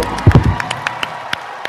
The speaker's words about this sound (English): Thank you. Let's get a big round of applause. Yay!